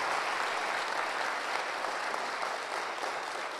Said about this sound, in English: So why don't we give them a round of applause? Yeah. Fire it up. Come on.